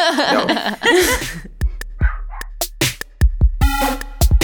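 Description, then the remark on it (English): A dog barks repeatedly in sharp, irregular bursts, fairly loud, with some high yipping and whining tones between barks. “I can hear your dog now.”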